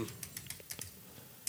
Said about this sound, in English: Click. I heard you angrily typing click as you were typing click,